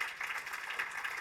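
Audience applause: a dense, steady wash of many hands clapping at once, fairly loud and even throughout, with no voices standing out.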